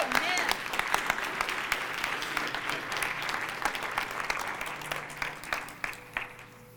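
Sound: audience clapping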